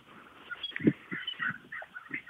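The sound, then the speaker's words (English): Birds chirp and twitter outdoors in a small nature area, a busy overlapping chorus of short calls that stays fairly loud throughout, with some low muffled sounds underneath. “Those birds are really loud, too.”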